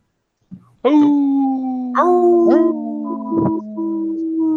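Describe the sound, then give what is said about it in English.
Several people howl like dogs, their long, wavering voices overlapping and sliding in pitch. The howls are loud and continue for a few seconds after a brief opening yip. “You can't howl?”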